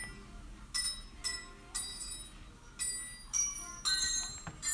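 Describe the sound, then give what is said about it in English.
Bright metallic ringing notes struck one after another in a quick, tune-like rhythm, each strike leaving a short shimmering tone: a Christmas song played by striking metal wrenches. “So that was Jingle Bells on some wrenches”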